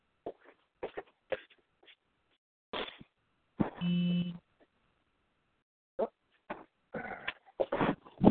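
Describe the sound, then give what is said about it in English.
A single electronic phone notification beep, a steady buzzy tone lasting under a second, stands out clearly between scattered bursts of background noise and muffled voices. “And another beep on your cell.”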